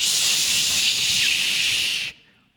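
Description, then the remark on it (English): A loud, steady blast of hissing spray from a fire extinguisher, used by a woman to blast a swarm of bees off two men, holds at full force for about two seconds, then cuts off sharply, leaving a faint fading trace. “So she gets there, and evidently, here's what a blessing, she finds a fire extinguisher, and she blasts the tarnation out of those bees.”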